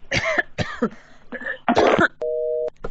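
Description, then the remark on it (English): Several harsh, rasping retching and gagging bursts in quick succession as someone throws up during a phone call in a phone booth, followed by a short steady electronic phone tone as the call ends and one last faint heave. “Did she hang up on me while I was throwing up?”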